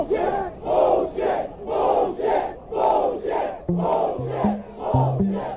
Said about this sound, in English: And again, the crowd was just cheering and cheering.